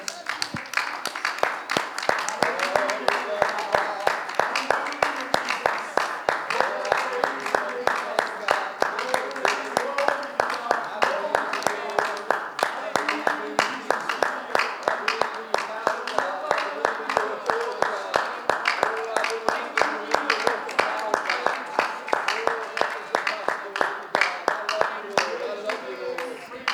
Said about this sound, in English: I wonder if we can give God a good hand clap of thanks today.